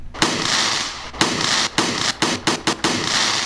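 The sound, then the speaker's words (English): Fireworks burst in a rapid, uneven series of sharp booms, each blast leaving a brief crackling hiss, loud with no voices. “We selected the part of the fireworks sound that I wanted.”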